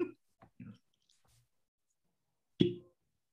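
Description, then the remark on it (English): A few soft knocks and fumbling clicks give way to one loud, hollow cork pop from a new bottle, with a brief low, resonant ring, followed by silence. No voices are heard. “Here comes the cork pop.”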